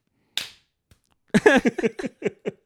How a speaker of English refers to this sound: Supposed to clap. Oh, un aplauso. There you go. Just one. Un aplauso y medio.